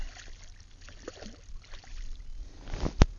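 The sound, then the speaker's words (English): A garfish hooked on a fishing line thrashes at the water's surface, making a run of irregular splashes that ends in one sharp, loud slap, with faint watery movement around a small boat. “You can hopefully hear this happy splashing, and it's really running.”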